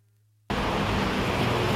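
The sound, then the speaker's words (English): After a brief near-silent moment, a dense, steady roar of road traffic on Civic Boulevard near Taipei Main Station, after rush hour, cuts in abruptly and continues loud with no voices. “Even after rush hour, Civic Boulevard near Taipei Main Station is still busy with traffic.”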